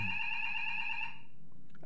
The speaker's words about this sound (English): Oh, that may be the fire alarm, guys.